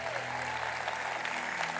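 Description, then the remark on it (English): A crowd at Linked Up Church claps steadily for the church's youth minister, a dense, even wash of many hands that holds its level from start to finish with no voices rising above it. “would you all give him a big round of applause?”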